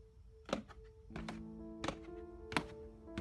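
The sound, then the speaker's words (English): Heavy footsteps thud down a flight of stairs into a cellar for alcohol, about five slow, uneven steps, each a dull knock over a steady low hum. No one speaks. “We hear the footsteps going down the stairs.”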